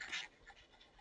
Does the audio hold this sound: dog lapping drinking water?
yes